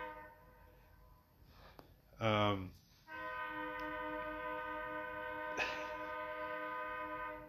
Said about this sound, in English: There's a train. I bet you everyone can hear the train.